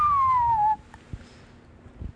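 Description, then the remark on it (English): A person whistles one short, clear note that slides steadily downward in pitch for under a second, followed by near silence with a couple of faint soft knocks. “That was me whistling.”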